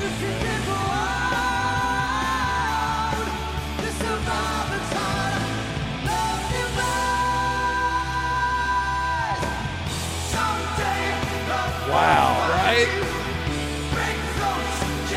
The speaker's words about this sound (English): That crowd is so reacting to, like, oh my god! He's just straight up crushing this fucking song.